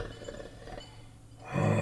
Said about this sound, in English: As you come to a slight bend, you peek your head around and immediately realize the source of the floor's vibrations. Lying in the middle of the hallway rests a snoring reptilian beast.